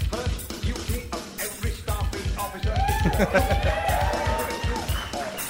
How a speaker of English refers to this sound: If you guys are going to cheer the drops, we're in good shape. We're in great shape.